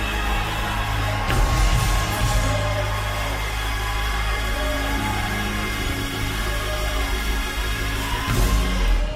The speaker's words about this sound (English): Somebody give a victory scream. At home, give a victory scream. Listening on Facebook, give a victory scream.